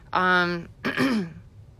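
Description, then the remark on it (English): A person clears their throat: a loud, voiced hum followed by a short, rougher, raspy burst, with no talking around it. “So, as I clear my throat, oh my goodness, the professionalism, the level of professionalism.”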